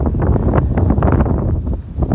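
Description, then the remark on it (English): Loud, blustery wind buffets the microphone with constant low rumbling and irregular gusty bursts, filling the whole stretch without pause. “Wow, it is really windy. It's kind of nice, but loud.”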